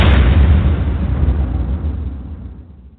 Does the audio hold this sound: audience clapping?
no